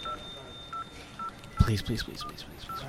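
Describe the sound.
Telephone keypad tones beep one after another at a steady pace, about six short presses in all, while a voice briefly talks partway through.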